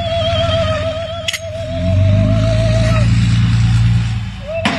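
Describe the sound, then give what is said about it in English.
A heavy white truck's engine rumbles as it is driven onto a residential property early in the morning, then revs up into a loud, sustained roar for a couple of seconds before easing off, with a thin steady whine and a sharp knock in the background. “Early Tuesday morning, someone drove this white truck onto their property, and then this.”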